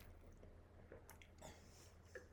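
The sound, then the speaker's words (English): Quiet sipping of wine with a few small wet slurps and lip smacks spaced out over a couple of seconds, followed by soft tasting sounds in the mouth. No one speaks. “Sip, sniff, swirl, sip.”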